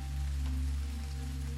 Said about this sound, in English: You wake slowly. The sound of rain falling gently outside your window reaches your ears.